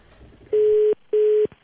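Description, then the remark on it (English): Two loud, steady electronic phone tones sound in quick succession, each lasting under half a second with a brief pause between, as someone dials a telephone keypad to make a call. No voices. “All right, let's call someone else.”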